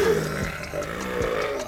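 A long, low, buzzy fart on a couch rumbles steadily for nearly two seconds, fairly loud, with a couple of brief pitch wobbles and no talking over it.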